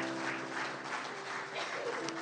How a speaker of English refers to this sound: Can we give a clap and just thank God? That's awesome. That's amazing.